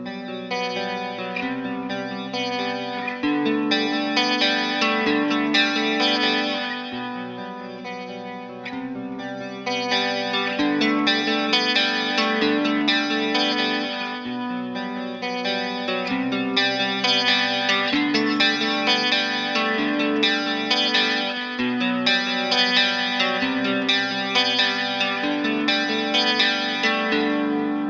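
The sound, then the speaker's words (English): A bright, jangly electric guitar played into a Vox AC15 amp through a Retrosonic Chorus pedal, a Universal Audio (UAD) Delverb and a Danelectro DC9, playing ringing chords and arpeggiated notes washed in delay and reverb that let each strum shimmer and trail into the next, with no voices over it. “I'm going to use the UAD or Universal Audio Delverb. And I'm going to use a Dan Electro DC9 for a jangly sound.”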